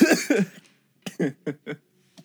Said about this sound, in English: Yeah, I made myself cough.